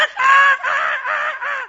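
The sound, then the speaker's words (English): A voice imitates frantic seagull screeching: a loud run of about four shrill, wavering squawks, one after another with barely a pause between them. “It sounds like if you gave every seagull in London Red Bull and then just threw them at each other.”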